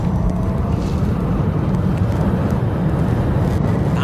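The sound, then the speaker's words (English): An electric production car accelerating hard from a launch, driven by Jay Leno on a quarter-mile run trying to break the land speed record for production cars, heard as a loud, steady low roar with rushing rumble that holds for several seconds, with no voices over it. “He tried to break the quarter-mile land speed record for production cars.”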